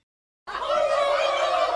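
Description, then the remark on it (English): After a brief silence, a loud, dense chorus of turkeys gobbling erupts and carries on steadily, many birds warbling over one another; the man-eating turkeys of Joseph Goebbels. “Joseph Goebbels and his man-eating turkeys.”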